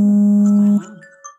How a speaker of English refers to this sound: that's my alarm to get up.